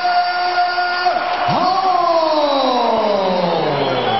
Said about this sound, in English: By the way, you hear that crowd, right? And this is the largest crowd that they've ever had. Because it was at a football stadium in Australia. Yeah. And so it's the largest crowd they've ever had for a UFC event.